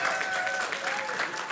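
A crowd claps in steady, dense applause for the speaker's wife, many hands overlapping into a continuous rattle at an even, moderately loud level throughout.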